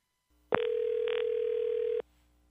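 A single steady ringback tone from an outgoing phone call placed by Mix 100.7 radio hosts to a listener. It is one unbroken electronic hum lasting about a second and a half, clear, with no voices.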